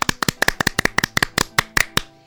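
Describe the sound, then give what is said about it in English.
Children clap their hands together in a quick, slightly uneven burst of about fifteen sharp claps that spread out and slow toward the end, with no talking. “Children, let's clap together.”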